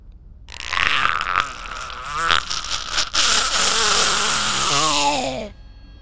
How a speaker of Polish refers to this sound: Dźwięk. Dziwny, zniekształcony wrzask przeszywa przestrzeń. Rozbija się echem pomiędzy tymi skałami.